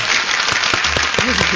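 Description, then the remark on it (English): A steady wash of applause, dense and loud from start to finish, with a few brief voiced calls rising through it near the end. “You get an applause there”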